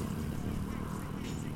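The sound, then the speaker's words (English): A voice mimics the deep thump of bass from the stereo of a black Jeep with its engine running, producing a steady low rumble that pulses continuously for a moment, with no actual words spoken. “The engine was on. And you could hear the bass in the truck, like...”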